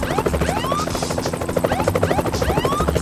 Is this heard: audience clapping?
no